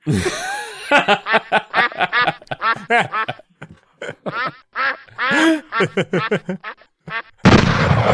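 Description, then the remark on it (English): A duck quack sound effect, played from a self-written sound-effects application, plays as a rapid, loud run of nasal quacks lasting several seconds, followed by a short burst of harsh static-like noise at the end. “Right, give him the duck.”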